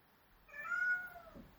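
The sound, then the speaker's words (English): A single drawn-out meow from a domestic pet cat, rising then falling in pitch, heard clearly at moderate volume against a quiet background with no talking. “My cats are starting to meow there, Riverdale gang.”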